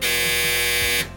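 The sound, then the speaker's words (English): A washing machine buzzer: a single loud, harsh electronic buzz holds steady for about a second, then cuts off abruptly, leaving a faint low hum behind. “And that was the sound of the washing machine.”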